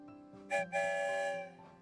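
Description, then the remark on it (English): A train whistle blows twice, a short blast followed by a longer sustained one, its layered harmonic tones sounding clear with no talking. “The story train is rolling on, past the big red barn and back to the train station.”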